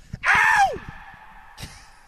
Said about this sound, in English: can I scream just to hear the echo?